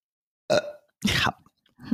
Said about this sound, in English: I have to burp.